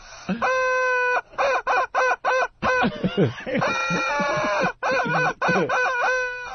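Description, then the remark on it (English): A rubber chicken toy with a cartoon-like head squawks loudly, first in a quick run of short, honking bursts, then in longer, strained, wheezing squeals, with no talking. “They didn't even make an authentic-looking chicken head on this rubber chicken.”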